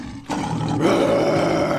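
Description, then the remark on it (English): A lion's roar bursts in suddenly and holds loud and rumbling for over a second, a deep, gritty growl with no talking over it. “Roar.”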